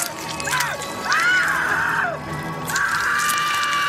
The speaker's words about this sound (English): Mom just screamed and screamed and screamed.